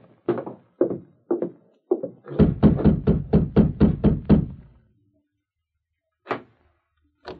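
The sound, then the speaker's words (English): A few slow, hollow knocks on a wooden door, then a rapid burst of about eight firm raps, followed by a pause and two more isolated knocks, no voices. The masked man is rapping on Dr. Martin's door in a town. “Martin was alone, then advanced and rapped on the door.”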